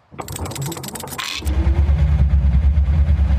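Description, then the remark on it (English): A bus engine cranks with a rattling whir, then catches and settles into a steady, loud low rumble as the bus begins backing out of a parking space, with no voices. “board the bus and begin backing out of their space.”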